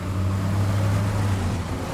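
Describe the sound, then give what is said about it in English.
A car being driven too fast, its engine droning steadily at speed, a loud, continuous low hum layered with rushing road noise that holds level throughout, with no voices. “Youssef, it's going too fast. Slow it down.”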